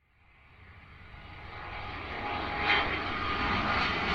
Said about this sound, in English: I've got a private jet lined up for our next stop. So grab your masks and let's hop aboard.